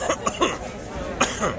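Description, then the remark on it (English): A loud cough into an interviewer's microphone comes in two short clusters of sharp, raspy bursts, the first a quick run of three, then another pair after a brief pause. “But this time it's like a lot of fun just because I get to come out and do this and meet people and cough in your mic.”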